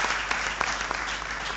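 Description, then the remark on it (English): A crowd claps steadily for one of the judges, a female judge, a dense wash of hand claps with a few sharper individual claps standing out, sustained at an even loudness throughout with no voices. “A round of applause one more time for her.”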